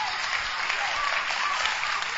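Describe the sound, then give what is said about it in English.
A church audience claps steadily as a pastor is welcomed to close the service, a dense, continuous wash of many hands at a fairly even loudness, with faint voices mixed in beneath the applause. “Oh, rise to your feet and give a better clap and a shout unto the Lord.”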